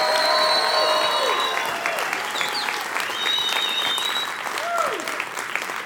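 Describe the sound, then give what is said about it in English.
A loud, sustained round of applause from a large audience for the event's presenters, MCs and testimonial speakers, dense clapping with cheers and whistles rising above it, steady throughout with no speech. “I'm talking about a rock concert round of applause.”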